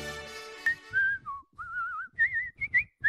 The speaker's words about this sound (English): Yeah, whistling. Is it an art form? Is it a lost art form? Do you like it? Is it annoying?